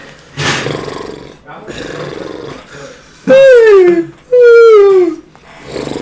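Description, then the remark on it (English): After some murmured voices, a person imitates a horse neigh with two loud, strained calls in a row, each sliding downward in pitch, as players in a game compete to make the best horse noise. “All right, which player makes the best horse noise?”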